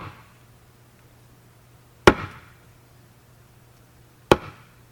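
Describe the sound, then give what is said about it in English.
Two sharp, hollow wooden knocks ring out a couple of seconds apart, each a big, thick hanging wooden board struck at a Zen Center zendo to call people to practice, with a brief resonant decay, over a faint low hum and otherwise quiet background. “and you're at the Zendo, and you're being called to practice, they bang on a big, thick piece of wood that's hanging, big hanging piece of wood, and they bang.”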